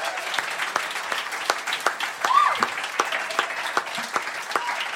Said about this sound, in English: We absolutely appreciate you being here. Give yourselves a round of applause, absolutely. Yes, thank you, thank you.